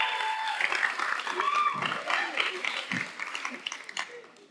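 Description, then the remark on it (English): A crowd applauds with dense, steady clapping, mixed with cheers and a few whoops, cheering on a woman. The noise stays loud for several seconds, then thins out as it tapers off. “But like, this is what she wants to do with her life, so let's cheer her on.”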